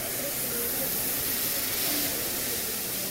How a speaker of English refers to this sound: That's why I chose the Palm House for a conversation about where we go next. I hope you don't mind a few hissing misters, by the way.